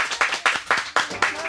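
A brief burst of applause, its claps landing in a steady, evenly spaced rhythm, fairly loud and bright, with no voices over it.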